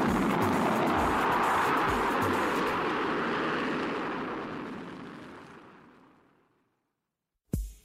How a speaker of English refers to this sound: I hop in the air car, flip on the protective shield, and blast my butt out of there.